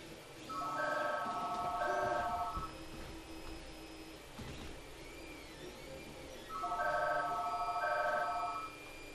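A mobile phone ringtone for an incoming call, apparently from a telemarketer, plays in two loud bursts of warbling, electronic trills, each lasting about two seconds, separated by a pause with faint room noise.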